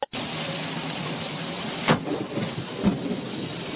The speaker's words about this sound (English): Lightning strikes, and this family has a moment never to forget.